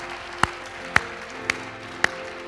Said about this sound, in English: Give the Lord a clap offering together. Thank you, Jesus.